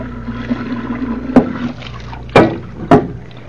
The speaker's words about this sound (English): Just let me fill these two vases with water, and then...